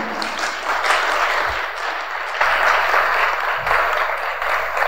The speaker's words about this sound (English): You have done well. Clap for him.